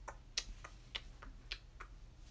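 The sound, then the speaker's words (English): A grandfather clock ticks steadily, its sharp tick and softer tock alternating at a slow, even pace over a low background hum. No one speaks. “For some reason, he also had a great grandfather clock beside him, going.”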